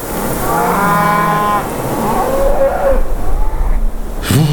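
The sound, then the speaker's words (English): Cows moo in low, drawn-out calls during a severe snowstorm in Brown County: one long bellow, then a shorter rising moo, over a steady rushing background noise, ending with a brief sharper sound. “While the cows and this awesome storm are newsworthy enough for most reporters, I'm actually here to look forward in time and tell you about the 1st of April.”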